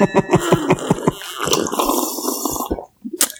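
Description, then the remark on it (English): Liquid is poured out, starting with a quick run of gurgling glugs and settling into a steady, hissing splash for a couple of seconds before it stops abruptly. “should we pour one out on behalf of that on the system?”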